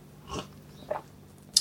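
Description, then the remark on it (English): Someone takes a quick sip of coffee: a soft slurp, then a small gulp and a faint click of lips, with no talking. “Quick sip of coffee.”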